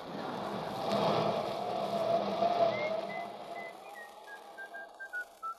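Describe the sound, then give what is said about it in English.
A person whistles a quick run of short, bright notes that starts midway and keeps going, over a broad rumbling background that fades away by the end. “Cut out that whistling. I can't stand it anymore.”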